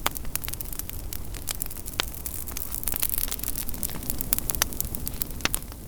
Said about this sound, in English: Last but not least, a fire. Just a fire crackling. And again, this was left pretty untreated. It just adds a little bit of crackly radio interference to the beginning of the track.